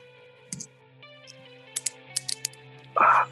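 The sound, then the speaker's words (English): The sealed cap of a new Jameson whiskey bottle being twisted open: a dull knock, then a quick run of sharp snapping clicks, followed by a louder rough scrape, over a faint steady hum. “It's a brand new bottle.”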